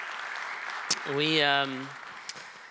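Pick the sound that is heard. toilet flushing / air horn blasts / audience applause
audience applause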